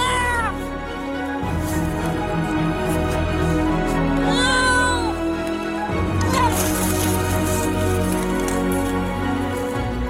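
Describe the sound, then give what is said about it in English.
A baby deer cries out in a few high, wavering bleats, each rising and falling in pitch, spaced apart over a steady hiss of background noise. “Anyway, that's the sound of a baby deer, folks, and now it's cut loose”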